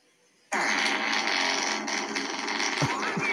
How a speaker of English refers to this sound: That was a snore? Yeah. Sounded like that's a fart. That's got to be a fart. It sounded like a fart.